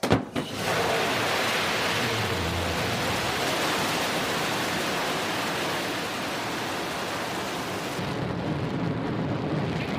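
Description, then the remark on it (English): A rocket engine roars at liftoff, carrying the second human spaceflight crew, with William Shatner, into space: a loud, steady, rumbling wall of noise that holds unbroken for the whole stretch with no voices over it. “That was the sound of William Shatner being shot into space.”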